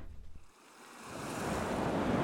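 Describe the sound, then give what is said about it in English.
Ocean waves swell up into a broad, steady wash of surf after a brief low rumble, with wind rushing across the water as an ocean liner sails out into the open sea early in the morning. “Early in the morning, the Rangoon blew out black smoke as it sailed out into the boundless sea.”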